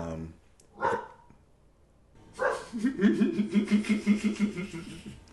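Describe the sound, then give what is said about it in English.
A dog lets out a short bark, then after a pause breaks into a rapid run of eight or nine quick, yappy barks, moderately loud. “Anybody want a dog?”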